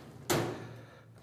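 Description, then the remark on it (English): An old, beaten-up blue metal filing cabinet with three drawers, unlocked with a key, has a drawer pulled open in one quick, moderately loud scrape and clunk, its rattle fading over about half a second, with no talking. “Okay, so this is, if you picture an old blue filing cabinet, it's three drawers, it's beaten up, it's locked. All right, the key's working.”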